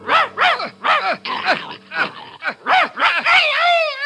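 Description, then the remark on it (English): A dog barks in a quick, steady series of about eight yelps, the last one stretching into a drawn-out, whining cry: Crab, the dog led on stage by Launce, the clownish servant of Proteus. “The stage direction, enter Launce, leading a dog.”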